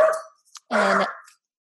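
puppies barking

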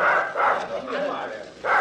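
dogs barking

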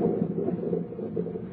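thunder

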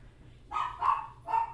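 dog barking loudly

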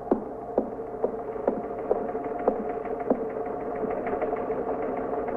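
teletype machine running

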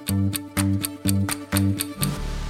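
clock ticking

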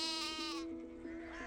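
sheep bleating

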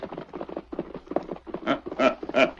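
horses galloping

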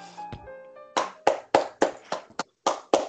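audience clapping

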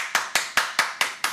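loud hand clap

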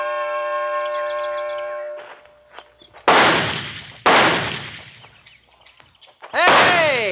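target pistol shots

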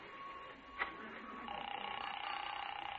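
telephone being dialed

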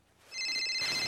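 cell phone ringing

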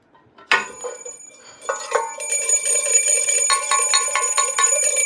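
bell ringing

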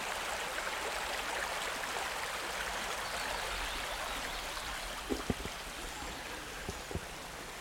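flowing river water

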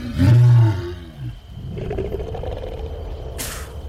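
lion roaring

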